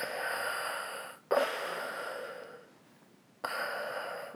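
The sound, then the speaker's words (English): A voice imitates heavy, mechanical respirator breathing: a long hissing inhale, a brief pause, then a rasping exhale, fairly loud with no speech. “Yes, you are breathing very, very heavily.”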